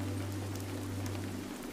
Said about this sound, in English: The view distills the romance of New England as the rain heavily falls and a fog rolls in, gripping the dwellings with its silvery mist.